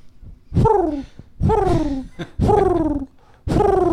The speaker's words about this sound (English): let me just preface this new place with some pigeon noises